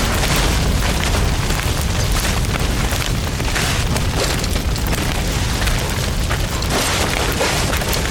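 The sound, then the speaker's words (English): A sustained, roaring explosion rumbles on for several seconds, loud and dense across the whole range, with crackling bursts and a deep continuous boom as torched gas pumps go up in fire. “He set the gas pumps on fire.”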